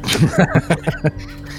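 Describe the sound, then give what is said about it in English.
A human voice imitates a screech owl snoring: a quick run of about six raspy, breathy pulses in a steady rhythm, fairly loud at first and tapering off into a faint hiss. “I'm going to make the sound of a screech owl snoring.”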